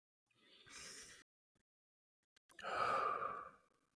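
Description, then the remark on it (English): A slow, deep breath is drawn in, followed after a short pause by a longer, audible exhale like a sigh, clear with no talking. “And we talk a lot about breath work and breathing and stuff, but seriously, take a breath with me right now.”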